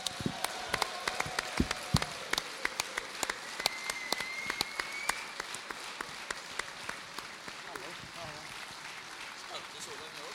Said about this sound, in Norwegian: Gi en stor applaus til kapteinen